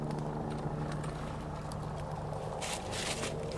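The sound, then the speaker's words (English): A loud helicopter or plane drones steadily overhead, seemingly getting closer, a low sustained engine hum with rumbling undertones and a faint airy hiss that swells briefly near the end. No one speaks. “Here, let's turn this up so you can hear the helicopter / plane.”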